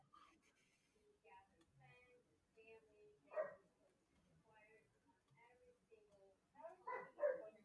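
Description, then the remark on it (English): A dog barks playfully while playing with his sister, in a few short, yappy bursts, one midway and a louder cluster near the end, fairly quiet, while people talk in the background. “Oh no, he's playing with his sister.”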